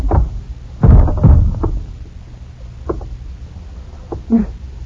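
A heavy blow lands with a dull thud, knocking a man out, quickly followed by a second thump, then quieter scuffling and a few faint knocks.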